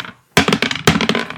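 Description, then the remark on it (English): Dice rolled during a Dungeons & Dragons game clatter across a hard surface in two quick bursts, each a sharp impact followed by a short run of rattling, tumbling clicks, fairly loud with no voices. “Shall we roll dice? Let's do it.”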